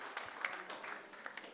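A crowd applauds with a dense patter of many hands clapping, steady and fairly soft throughout with no one speaking over it.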